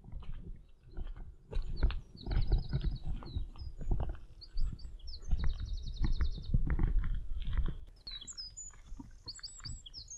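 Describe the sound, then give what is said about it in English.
A wren's rapid, trilling song rings out in several bright bursts, fairly close, on a path running beside a railway and a road, over steady crunching footsteps and low rustling noise; no one speaks. “There's a wren calling just up here.”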